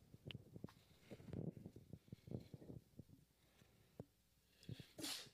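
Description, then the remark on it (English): A single sharp, breathy sneeze bursts out near the end, fairly loud, after a stretch of soft murmuring and shuffling noises. “Bless you.”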